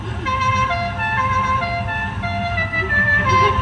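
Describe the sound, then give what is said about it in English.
A loud, unusual car horn blares a continuous sequence of shifting tones, like a brassy melody, for several seconds over a low engine rumble, as a man arrives in his car. “He has the most ridiculous horn on his car.”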